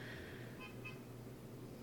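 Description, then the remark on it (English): A car horn outside gives two quick, high-pitched toots in a row, fairly faint over a steady low rumble of background noise. “Somebody just honked.”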